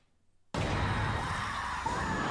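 After a brief silence, a loud, harsh breath bursts in suddenly and holds steady for about two seconds, close-up and noisy, like heavy, strained breathing with no talking.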